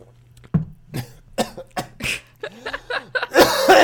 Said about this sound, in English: That is unrelated coughing. I've got a cold.